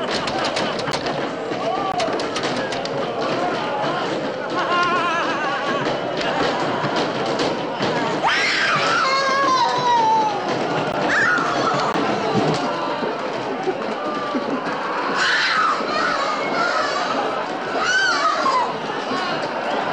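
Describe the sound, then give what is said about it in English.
In a film scene, a chaotic crowd of male asylum patients in a room shrieks and yells over each other in pandemonium, with sharp screams rising at intervals amid thuds and scuffling, loud and continuous throughout. “When they notice her, the room erupts in pandemonium, with many of the patients grabbing at and molesting Catherine.”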